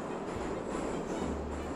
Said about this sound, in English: Passengers then file onto the platforms before climbing aboard dimly lit carriages lined with scuffed burgundy-coloured vinyl banquettes that hurtle noisily through the city.